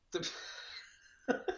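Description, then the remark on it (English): A single sneeze bursts out with a sharp onset and a hissing, breathy tail that fades over about half a second, followed by two short, clipped vocal bursts. “Bless you.”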